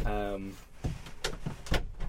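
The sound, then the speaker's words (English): A short vocal sound opens, then a few sharp knocks and clunks follow in quick succession, like a door being pushed shut and its latch catching. “Close the door.”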